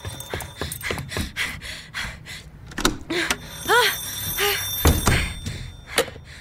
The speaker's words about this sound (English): When I walked back into the apartment, frantic, the phone was ringing.